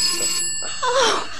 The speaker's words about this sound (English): Oh, the phone's ringing! So I noticed! But the line was dead when we checked it earlier. The switchboard had disconnected. Somebody must be phoning from the switchboard itself.